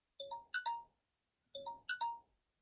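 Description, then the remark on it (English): A timer alarm chimes out a short electronic melody of a few bright, high notes, then repeats the same phrase once more after a brief pause, with no voices. “An enlarged spleen, or here goes my timer.”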